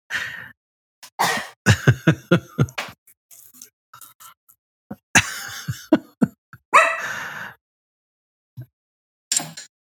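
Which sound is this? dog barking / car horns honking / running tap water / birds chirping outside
dog barking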